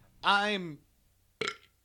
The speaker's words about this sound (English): Oops. You know what's so funny? I'm not drunk. And that burp wasn't related to the drinking.